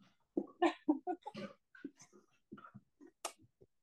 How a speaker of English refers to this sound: Oh, my dogs are very excited.